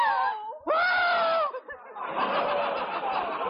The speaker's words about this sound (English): What are you screaming for? Gee, you scare me too.